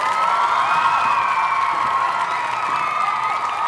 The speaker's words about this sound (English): One more round of applause for my duet partner and the love of my life